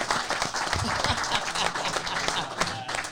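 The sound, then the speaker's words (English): A burst of steady applause from a crowd for a man's wife, dense and continuous for a few seconds, with many hands clapping at once and a few faint voices mixed into the noise. “And hey, big round of applause for his wife.”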